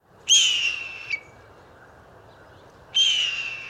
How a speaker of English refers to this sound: That's probably some sort of raptor, maybe a hawk. If not, a blue jay impersonating a hawk.